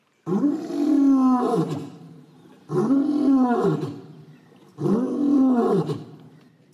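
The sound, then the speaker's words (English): A lion roars three times in steady succession, each deep, rumbling call swelling loud and then trailing off into a brief pause before the next, heard clearly with no talking. “He roars no more.”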